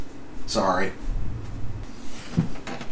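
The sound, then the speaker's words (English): A cabinet door beneath a sink, with a cat inside the cabinet, swings open with a brief creak, followed by low muffled rumbling and a single short knock a moment later. “guts in the cabinet under the sink, and then won't push her head against the door to get out of it.”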